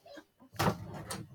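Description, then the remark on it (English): A drawer is pulled open with a sudden scraping slide, followed by a second or so of rattling and rummaging noise as someone searches inside it for an item. “It might be in my drawer.”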